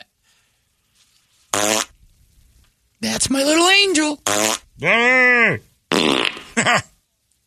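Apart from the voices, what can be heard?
fart sounds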